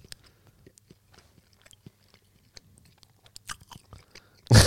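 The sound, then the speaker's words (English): Wet chewing of soft, moist canned fried chicken fish that tastes like tuna: a steady run of small smacking and squishing clicks with no talking, ending in a sudden loud, broad burst of noise. “The longer you chew something, the more you hate it.”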